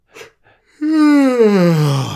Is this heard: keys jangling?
no